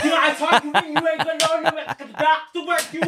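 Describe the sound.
Sharp hand claps ring out in a quick, steady rhythm, about ten in a row, while a loud voice chants or shouts continuously beneath them.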